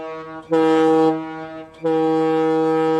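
A loud, steady horn sounds in two long blasts, a low, buzzy, chord-like tone separated by a brief dip. It's dominant, with no talking over it.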